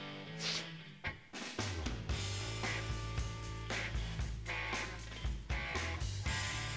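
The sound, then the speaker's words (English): A heavily overdriven electric guitar chugs loud over a thick, sustained low end, the clacking of fingers and pick audible, with sharp pick attacks punctuating the dense, gritty wall of music throughout. “I love that guitar tone when it's like so overdriven that you hear the like clacking of the fingers and the pick on it.”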